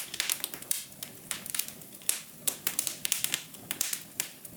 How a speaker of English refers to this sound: Oh, that's just a bunch of fire because it was very hot. A crackling fire. Yeah. It was sizzling.